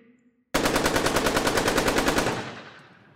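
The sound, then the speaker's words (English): A rapid, sustained burst of automatic gunfire, about two seconds of fast, evenly spaced loud shots that suddenly start and then fade out with a brief echoing tail. “Automatic weapons were firing.”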